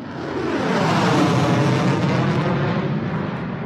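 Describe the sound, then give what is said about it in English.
A loud, sustained jet roar fills the air, swelling as a military aircraft passes overhead during the Exercise Talisman Sabre 2021 military exercise and then easing slightly, with no voices present. “And there's planes, fighter planes for, air combat and lots of other sorts of planes.”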